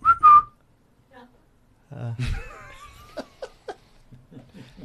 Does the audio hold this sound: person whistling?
yes